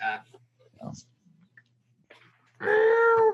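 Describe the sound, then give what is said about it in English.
A cat outside the door lets out one long, loud, drawn-out meow, coming after a stretch of faint, scattered noises and near silence. “I had a couple cats down here earlier, but they're gone. One's outside the door now, but.”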